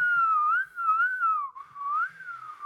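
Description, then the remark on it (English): A person whistles a wavering, continuous tune for a few seconds, the pitch gliding up and down in a steady melodic line, clear with no talking. “That's me trying to whistle.”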